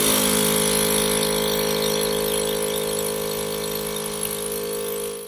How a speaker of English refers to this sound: One bloke got some line on a fishing rod and the other bloke got a vacuum sealer.